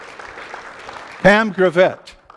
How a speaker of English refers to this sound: I think you need to stand and applaud for Jesus. Stand and applaud for Jesus. Stand and applaud for Jesus.